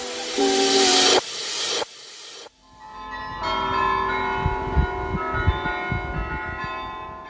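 After a few seconds of loud rushing hiss, the large bells of the Dom Tower in Utrecht, the Netherlands, ring out in a sequence of resonant, overlapping tones that suggest a melody, with each strike ringing on over the last.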